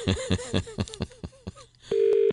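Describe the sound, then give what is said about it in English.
A telephone call to a place on Upper Rotunda in Dublin, Ireland: a rapid string of clicks and short electronic tones, ending in a steady, moderately loud ringing tone, with no one picking up or speaking. “They're not going to answer your phone call.”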